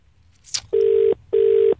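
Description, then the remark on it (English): A phone line's ringback tone: two steady, buzzing purrs in quick succession, the classic double-ring pattern, loud and clear after a brief click, with no voices. “The thing is, he's ringing and he knows it's ringing.”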